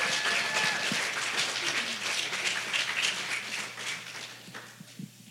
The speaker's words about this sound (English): Can we please give a round of applause for our pastor